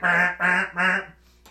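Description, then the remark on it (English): A voice imitates the horn of a stuck car being honked, with three loud, nasal honks in quick, even succession, each about a third of a second long, followed by a faint, brief trailing sound. “And then like his girlfriend starts honking.”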